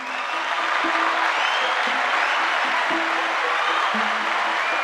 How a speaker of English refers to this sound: Our big question this week comes from Israel. Let's give Israel a round of applause.